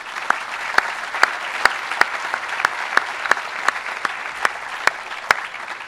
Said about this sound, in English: A heartfelt thank you and a round of applause to all of you. We're grateful.